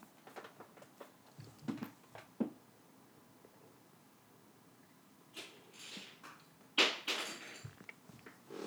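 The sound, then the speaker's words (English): Irregular knocks and clattering thumps of small objects as Melvin, an indoor-outdoor cat, pushes them off a fridge and they drop, with a louder burst of rattling clatter toward the end, separated by quiet stretches and no talking. “You're knocking stuff off the fridge?”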